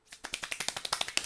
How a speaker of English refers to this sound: I can clap quickly. Let's see.